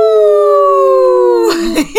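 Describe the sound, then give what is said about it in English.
People imitate a wolf with a long, loud, sustained howl for Izzy, the she-wolf, that slowly slides down in pitch, then break off into a few short, wavering vocal yelps. “Izzy, let's give a good howl for her, the she-wolf.”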